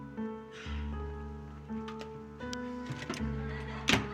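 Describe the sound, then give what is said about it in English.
A fridge door is pulled open with a soft rattle as someone gets water, and later shut with a clunk, set against a steady low electrical hum and faint rustling, with no one talking. “That's why we have a fridge.”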